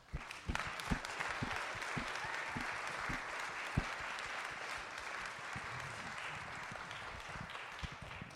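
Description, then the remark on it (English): An audience breaks into applause to thank God during a church service: many hands clapping in a dense, steady patter for several seconds, with a few sharper individual claps popping out, especially near the start, and no talking. “Let's thank God by giving Him a hand. Some applause, okay?”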